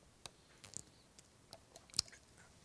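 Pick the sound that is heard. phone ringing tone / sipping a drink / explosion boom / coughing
sipping a drink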